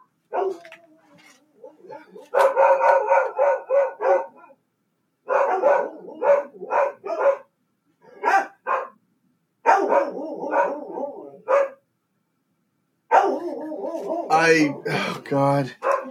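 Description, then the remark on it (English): Dogs bark loudly after someone rings the doorbell, in repeated, clustered bursts with short pauses between them, mixing sharp high yips with whining, pitched yelps, and the final stretch grows into a frantic, overlapping flurry. “And the dogs.”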